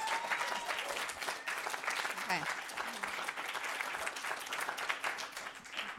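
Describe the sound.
A crowd applauds steadily for about six seconds, a dense wash of clapping at even loudness, with a few murmured voices and brief whistles mixed in.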